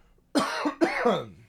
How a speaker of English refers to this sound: Oh, I got a cough.